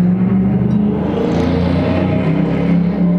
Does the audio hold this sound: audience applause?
no